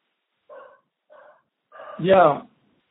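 A dog barks three times in quick succession, the first two short and muffled, the last a louder, fuller bark that stands out clearly with no talking over it.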